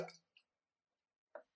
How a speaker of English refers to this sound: I'm going to swish my water into the mic.